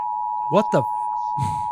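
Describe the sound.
A steady, unbroken electronic TV beep tone holds one high pitch for the whole stretch, while a brief burst of voices and a short rustling noise pass over it.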